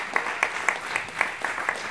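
Audience applause for a storyteller and for the audience themselves: a steady wash of many hands clapping, with sharper individual claps standing out at a regular, fairly quick beat. Moderately loud, with no voices over it.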